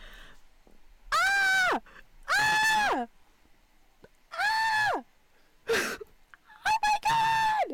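A person lets out a series of about five loud, strained screams in close succession, each holding then sliding downward in pitch, with brief pauses between and no talking.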